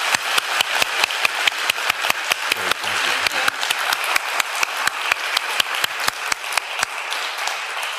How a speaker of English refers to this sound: And just thank you for what you shared with our congregation. So we give them a round of applause.